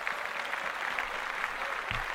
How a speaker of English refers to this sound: Clap that up. Yeah.